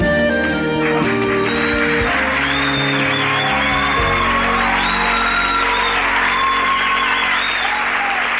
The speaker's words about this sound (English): And this being a Gary Marshall show with recognizable faces, even the most tertiary of characters get a lengthy round of applause.